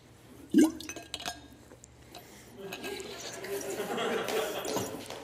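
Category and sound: household object, drinking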